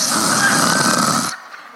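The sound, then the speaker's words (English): A person imitates a loud snore with their voice, one long rattling inhaled snort lasting over a second, then it cuts off abruptly into near silence. “That was snoring.”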